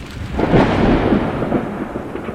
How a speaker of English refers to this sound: Unfortunately, the temperature dropped 10 degrees and it began to thunderstorm midway to the city.